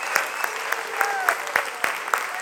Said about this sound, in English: But let's lift up a clap offering to the Lord right now. Hallelujah.